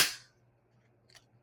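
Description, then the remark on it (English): A drink container cracks open with a sharp pop and a brief fizzing hiss that fades quickly, then a faint small click in the quiet that follows; it is opened for a drink ASMR recording, with a glass of ice ready. “And I waited for you guys to open this up.”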